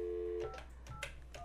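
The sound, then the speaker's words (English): A steady dial tone cuts off, then several short electronic keypad beeps sound at uneven intervals as a number is dialed on a cell phone, fairly quiet, with no talking. “We could call her cell phone. Here, let's try it.”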